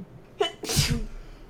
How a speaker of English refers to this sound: Bless you!